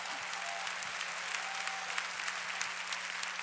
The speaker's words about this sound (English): If you're glad just to know the Lord, clap your hands and give praise.